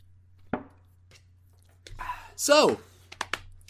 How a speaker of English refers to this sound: I'm going to drink... This one's for you. ...a swig of my water for you, buddy. Yeah, water. That's what I got.